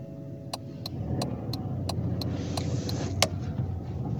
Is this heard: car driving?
yes